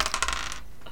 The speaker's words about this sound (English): I love rolling dice. This is the best part.